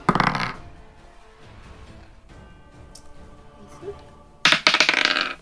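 Dice clatter and tumble across a hard tabletop during an offense check in a tabletop role-playing game, landing on a natural one. Two short, bright bursts come, one at the start and one near the end, with a quiet stretch of room noise in between.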